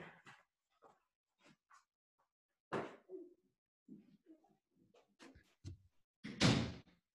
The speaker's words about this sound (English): can you please get out of my office and close the door?